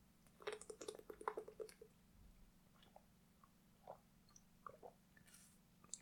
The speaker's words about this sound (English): And I'm going to take a drink of water.